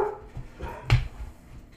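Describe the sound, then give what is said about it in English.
A dog barks a few times, one sharp loud bark standing out among softer woofs and a faint whine, with no talking. “Seriously, the dog has lost his mind.”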